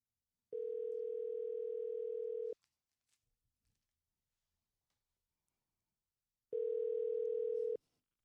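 An outgoing phone call rings back twice, each steady electronic tone lasting about two seconds with a long quiet pause between, clear and fairly loud with no voices.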